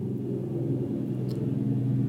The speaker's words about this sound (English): A truck has to go by now. Go figure that out. Happy Father's Day to the driver of that truck.